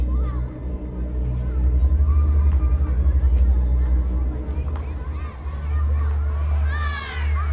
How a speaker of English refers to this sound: The cheers and screams of laughter crawl up Jessie's spine, awakening the gnawing itch she can't quite banish.